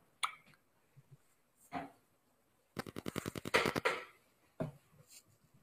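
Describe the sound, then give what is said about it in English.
Playing cards being shuffled: a quick riffle of crisp, rapid flutter clicks lasting over a second, with a few isolated soft card slaps and taps before and after. No one speaks. “Are we shuffling again? Shuffling again.”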